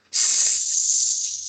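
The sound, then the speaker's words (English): A steady, loud hiss of air escaping from the punctured driver's side rear tire of a truck, starting abruptly and continuing without pause, with no voices. “There's a snake in my driver's side aft tire.”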